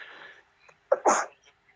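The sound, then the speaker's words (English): A single sharp sneeze, loud, preceded by a brief breathy intake, with a short quiet pause between and nothing else around it. “Bless you.”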